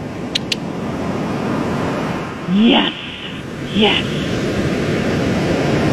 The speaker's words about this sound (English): Ocean sounds to enhance your experience.